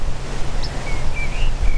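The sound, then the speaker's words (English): A tree sparrow gives a few brief, high-pitched chip calls, thin and fairly faint, spaced irregularly over a steady rushing background of wind-like noise. No one speaks. “It's a sort of, people travel a long way to see a tree sparrow. Right. It's got that high-pitched chip-chip.”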